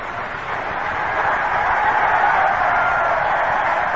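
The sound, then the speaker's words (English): A stadium crowd at Shea Stadium lets out a steady, swelling roar in reaction to a string of firecrackers set off somewhere up in the stadium's caverns, holding loud and unbroken for several seconds, with no distinct pops standing out and no one speaking over it. “That is just a crowd reaction to a string of firecrackers that have sounded back up in the caverns of Shea Stadium somewhere.”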